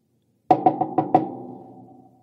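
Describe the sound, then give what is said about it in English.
Five quick knocks on a slightly ajar door in an uneven rhythm, loud, with a hollow echoing ring that lingers and fades for about a second afterward, around midnight or 1 a.m. “We knock on the door.”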